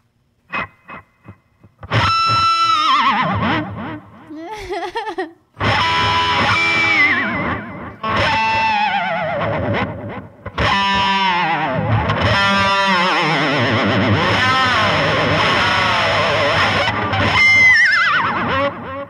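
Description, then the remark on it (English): A heavily effected, distorted electric guitar wails in bending, descending slides that mimic a horse's whinny, loud, with a few short plucks at the start and no talking. “It's a horse.”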